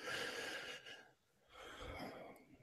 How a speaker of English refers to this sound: He gasped.